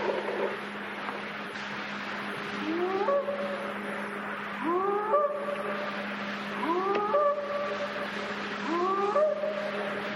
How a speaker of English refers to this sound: Sounds kind of like an elk. No animal in the world could make that sound. Not an elk, not a goose, not an owl, not a person. Only a Sasquatch, an interdimensional shape-shifting Sasquatch.